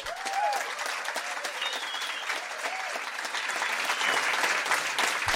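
Steady applause from an audience of about 200 at Mejeriet as a guest is welcomed onto the stage, dense clapping that holds at an even level throughout, with a few faint whoops and cheers rising over it.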